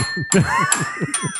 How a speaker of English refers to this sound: Man, these bells suck.